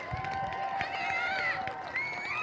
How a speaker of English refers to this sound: Wow. That was legitimately the best applause anyone has ever gotten here. Like, even Jesus. Like, Jesus is a little jealous right now.